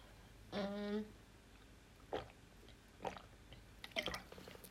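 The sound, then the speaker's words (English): A person drinks water: a brief hummed tone, then three or four separate wet gulps and swallows spaced about a second apart, quiet and with no talking. “That's me drinking water, by the way.”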